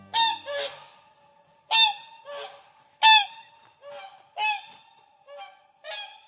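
Loud, brassy honking calls from a whooper swan, delivered in paired bursts roughly every second or so, clear with no other sounds around them.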